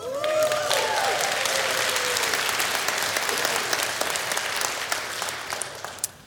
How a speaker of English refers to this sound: So just bear in mind, I'm looking for a lively bunch. I'm looking for applause if this rings true for you.